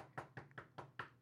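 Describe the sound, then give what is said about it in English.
Five quick knuckle knocks on wood in an even, steady rhythm, each a hollow, resonant rap, fairly loud, with no talking. “Knock on wood.”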